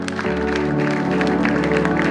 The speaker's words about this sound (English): Because He's a God who's worthy of worship. Can we send up a hand clap of praise to a God?